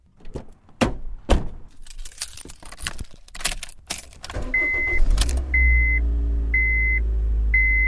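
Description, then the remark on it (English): Keys jangle and clatter, then the engine of a 16-year-old Honda Fit starts and idles with a low rumble while a steady electronic chime beeps repeatedly at even intervals. “That's my old beater, a 16-year-old Honda Fit.”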